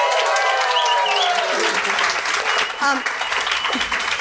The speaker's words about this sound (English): Let's have a round of applause.